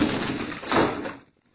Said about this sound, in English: Let me close those garage doors for you.